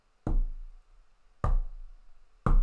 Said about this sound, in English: Ooh! Just like heavy footsteps. And the camera's just right there in the bedroom, and you can't see shit because it's nighttime. And this is the one jump scare in the movie, and this is so good.